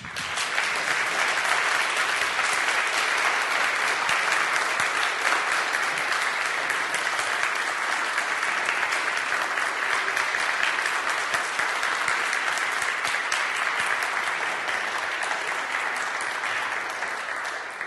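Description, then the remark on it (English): Sustained audience applause thanking the performers of a morning service of songs, sonnets, music and poetry, a dense, steady wash of many hands clapping at an even loudness for the full length, with no voices standing out above it. “They just wanted to shut up, Steve, so we can clap.”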